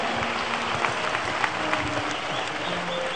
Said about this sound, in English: Put your hands for the Lord. Applaudissez pour le Seigneur.